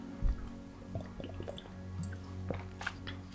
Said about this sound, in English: Excuse me, I need to get a drink of water.